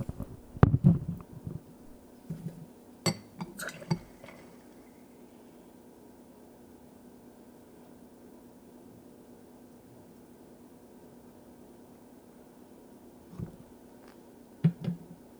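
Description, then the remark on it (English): The first full draft of the NEOZAZ Signature Test Recipe 1 beer pours from a tap into a glass: a few clunks at the start, then a steady, soft hiss of flowing liquid for several seconds, ending with a couple of light knocks. “I'm about to pour the first full draft of this NEOZAZ Signature Test Recipe 1.”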